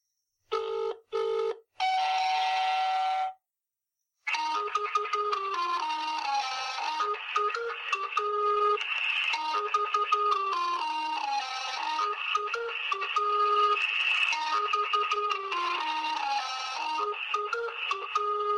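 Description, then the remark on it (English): A few short bursts of telephone tones open, then after a brief gap a steady, fast stream of beeping electronic phone-line tones runs on continuously, loud and clear, with no voices. “there is a phone number, supposedly an MI6 phone number, which is used to, when you phone it up, it's basically a number station on a phone.”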